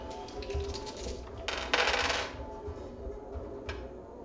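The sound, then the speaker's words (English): Dice clatter and rattle against each other as a hand rummages through them looking for an orange 10, with a brighter burst of jangling in the middle, moderately loud with no talking. “Lost my orange 10? Oh, it's in here. It's the last fucking thing in here.”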